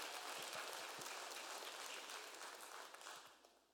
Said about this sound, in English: Give God praise for what He's doing. Give a shout. Give a hand clap.